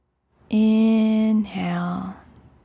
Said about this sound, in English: Inhale through the nose and hum out. Inhale through the nose and hum out. Inhale through the nose, hum out. Inhale through the nose, hum out. Inhale. Exhale, hum.